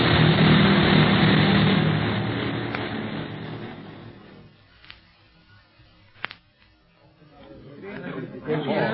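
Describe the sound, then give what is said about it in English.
An enemy plane, out of control in a nosedive, comes down outside the city walls of Kano: its engine roars loudly and then fades as it descends, followed by a couple of sharp knocks and a swelling rush of noise, with indistinct voices. “Enemy Plane Crashes”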